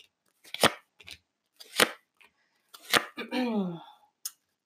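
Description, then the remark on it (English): Tarot cards are shuffled for a Scorpio reading in three sharp, papery bursts about a second apart, fairly loud, followed by a brief stretch of someone speaking and one last quick card tap. “All right, that's enough shuffling.”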